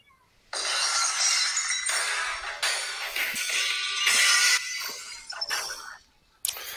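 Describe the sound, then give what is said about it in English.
Loud, bright glass shattering bursts in suddenly, followed by a cascade of crashing, tinkling shards over several seconds, then a brief silence and another sharp smash at the end: the opening of Austin's wrestling entrance music for a main event. “The thing about Austin's music is you can play like 3 seconds of it, and then it gets the point across. Everybody knows that glass shatters.”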